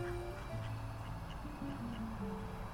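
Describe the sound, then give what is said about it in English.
Ducks quack on water in a steady, overlapping series, fairly quiet, with no talking over them. “and I think because it's a podcast, it'd be nice to hear the sound of the ducks.”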